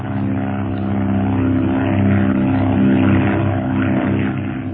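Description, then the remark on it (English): A propeller airplane engine drones steadily and loudly as the plane climbs again inside a cloud, a dense continuous roar with a harmonic hum that swells slightly as it climbs, with no voices. “We're in a cloud. I'm going to climb again.”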